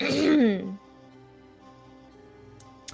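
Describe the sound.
A single deliberate throat-clearing, a short voiced 'ahem', fairly loud, then near-silence with faint room tone and a small click at the end.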